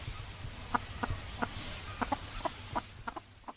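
Chickens on a small farm in rural Vietnam, raised as food for the family, cluck in a steady, irregular series of short, sharp calls over a low rumbling farmyard background, clear, with no one speaking.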